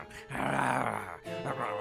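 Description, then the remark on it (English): A voice imitates a lion's growl: a rough, rumbling snarl held for about a second, then a shorter second growl, loud with no other talk. “and chew on it did the lion when he spied it near.”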